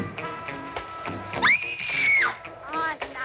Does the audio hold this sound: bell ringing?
no